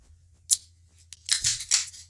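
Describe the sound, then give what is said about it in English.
A beer bottle is pried open with an opener: a sharp metallic click, a lighter tick, then a louder hissing rush of escaping gas in two bursts, with no talking. “Well, yeah, I'm ready to find out what it tastes like. So, right. Opener.”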